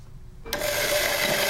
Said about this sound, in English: Coffee beans go into the grinder, boiling water is poured on, and the scent of caffeine fills the air.